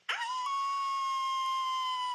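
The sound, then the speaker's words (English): A person imitates a werewolf howl, one long, steady, high-pitched note held loudly for about two seconds after a sharp start, with no talking. “That's a good howl.”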